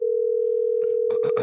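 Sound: telephone call ringing tone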